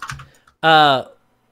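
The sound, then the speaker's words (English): A few quick, brief taps on a computer keyboard, followed by a short, loud, sustained vocal hum that fades out. “Stop typing.”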